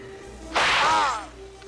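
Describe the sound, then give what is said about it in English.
A single loud whip crack sound effect, a sharp snap with a brief whooshing swish trailing off over about half a second, standing alone against a quiet background with no talking, accompanying the line about a TV news anchor as an 'anchor with a whip'. “It must be anchor with a whip.”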